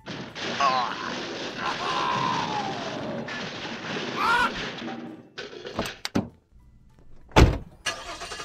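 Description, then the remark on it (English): A car drives with a loud, rumbling engine and a few high squeals for several seconds, then goes quiet before a couple of sharp thuds like doors slamming. “Guys, get in the car.”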